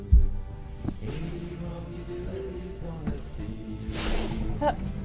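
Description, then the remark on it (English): A person blows their nose in a forceful, breathy honk, with a few softer snuffly bursts before it and people talking in the background. “You blow your nose, I'll just watch Walker, Texas Ranger.”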